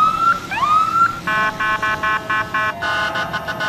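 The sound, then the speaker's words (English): Emergency vehicle sirens blare, sounded by firefighters welcoming the Winnipeg Blue Bombers in Manitoba as they step off their plane after winning consecutive Grey Cups. The sirens open with rising whoops and then switch to a rapid, pulsing yelp with a steady horn-like tone, loud over a rumbling outdoor background. “Stepping out of the plane after winning consecutive Grey Cups to a warm welcome of firefighter applause and sirens.”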